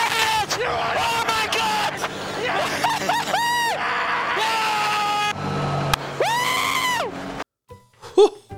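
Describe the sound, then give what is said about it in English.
A racing driver, Albon, screams excitedly in a string of long, high-pitched, wavering yells over a steady engine drone, loud, ending abruptly with a couple of brief sharp noises. “Ooh, Albon's screaming there.”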